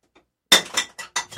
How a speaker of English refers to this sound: Shatter goes the glass on the floor.